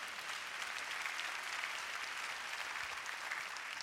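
crowd, audience clapping hands

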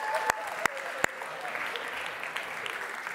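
crowd, audience round of applause

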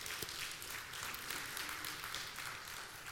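sound effect, applause sound effect

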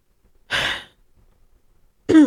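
human body sound, throat clearing cough

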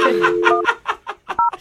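signal or alarm, telephone number being dialed

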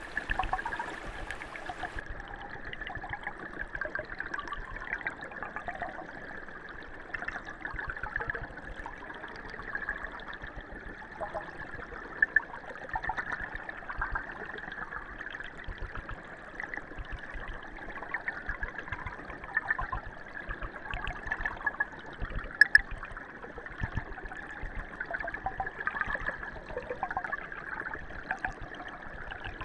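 nature, river water flowing

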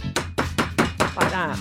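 animal, dog growling

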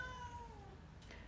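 animal, cat meowing

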